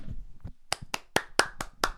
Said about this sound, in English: We can just clap right now. Yeah, let's clap it up. Yeah.